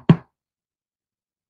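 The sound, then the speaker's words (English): A single sharp knock, like knuckles rapping once on a wooden door, fairly loud, followed by silence. “It wouldn't just be three little annoying.”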